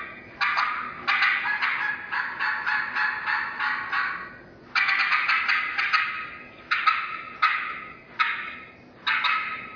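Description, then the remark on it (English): A second game call imitates an excited hen turkey cutting, giving loud, rapid bursts of sharp clucks and cutts in uneven clusters with brief pauses between runs. It plays alone, without talking. “Caller number two, you're cutting of the excited hen.”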